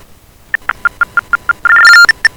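After a dropped phone call, a rapid series of short, evenly spaced telephone keypad tones beeps out, followed by a brief sustained two-tone chord and a few more beeps, loud with no voices.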